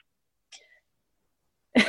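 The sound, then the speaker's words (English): A quiet, short vocal sound at first, then after a pause a loud, harsh cough bursts out near the end, with no talking. “I didn't want to cough. I'm going to mute myself.”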